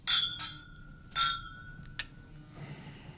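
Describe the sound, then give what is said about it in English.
Glasses clink together in a toast, two bright chimes with a lingering ring, followed by a smaller tap, heard over a low hum. “Yeah, let's raise our glass.”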